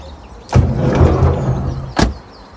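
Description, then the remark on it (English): A bus door clunks open, followed by a couple of seconds of rumbling movement and shuffling as people climb aboard the bus, then the door shuts with a sharp slam. No one speaks. “Let's get in the bus. Come on, yous, get in.”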